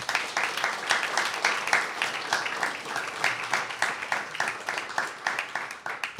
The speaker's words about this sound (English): This is a high privilege for us and big honor and big joy to welcome Tim Snyder in the space of Pan Ukraine. Please give Tim a huge round of applause.